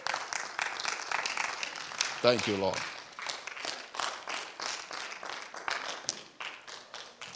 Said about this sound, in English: Stand and clap for Jesus.